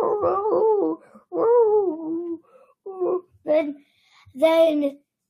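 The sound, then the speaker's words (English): A person's voice imitates a dog howling: several drawn-out, wavering howls followed by a few short yips, ending with a brighter, strained cry. It is moderately loud, with no other talk. “And then they hear the howling.”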